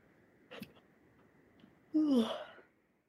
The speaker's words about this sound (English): Sorry, I keep yawning.